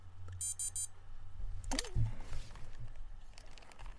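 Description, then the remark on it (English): A quick run of four or five high, thin electronic beeps from a TENS unit, fairly soft, followed by a brief handling rustle and thump. “That's my TENS unit going off, if you heard the little beeps.”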